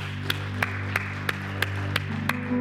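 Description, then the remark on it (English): Applause for three individuals after a prayer: steady, evenly spaced claps, about eight of them, sound in a regular beat over a sustained low humming chord. The clapping is moderate in loudness, and no one speaks. “Can we give these three individuals right here in this place a huge round of applause?”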